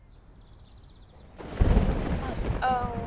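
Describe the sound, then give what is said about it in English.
After a quiet stretch with faint high chirping, a loud roll of thunder from a lightning storm bursts in and rumbles on steadily to the end, with a brief voice-like sound rising near the close. “Heat lightning. We should get indoors.”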